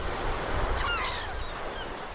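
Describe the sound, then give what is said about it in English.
Sea waves breaking on the shore at Margate on the south coast of England, in a steady, rushing roar that fills the whole clip, with faint thin high calls drifting over the surf partway through. “I'm on the south coast of England”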